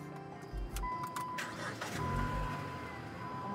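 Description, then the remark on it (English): A car engine turns over and starts, with two low rumbling bursts among sharp mechanical clicks and a thin steady whine, then a continuous idle hum. “Go ahead and start it up.”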